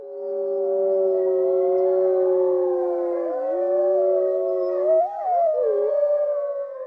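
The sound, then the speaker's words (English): Several voices howl together in imitation of wolves as a tribute to ElfQuest characters who died, long sustained wavering tones overlapping for about seven seconds, loud, with pitches rising and bending toward the end. “So let's have a howl for them.”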